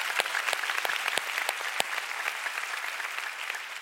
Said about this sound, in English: Come on, church, go ahead and give the Lord a great clap.